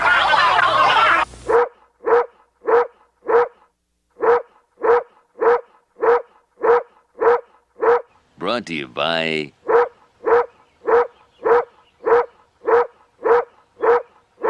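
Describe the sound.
A short spoken phrase, then a dog barks in a steady, evenly spaced run of about twenty loud barks, broken once midway by a wavering, whining yelp.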